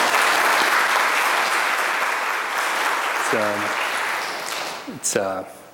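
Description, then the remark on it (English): An audience applauds in a steady, dense wash of clapping that slowly tapers, with a few voices calling out over it near the end. “Yeah, clap it up.”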